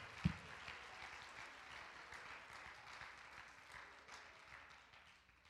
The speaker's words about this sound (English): Come on, somebody, let's clap our hands and show some thanksgiving in the house of God today for what He has richly done.